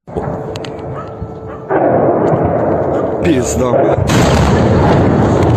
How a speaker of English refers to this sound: Let me play I think it's cut 11, is it not, of the bomb. Here's what they think may be a fuel air bomb or a thermobaric rocket.